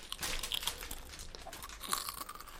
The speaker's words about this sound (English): Oh my god, ASMR chewing. Yes, thank you. And give us some ASMR.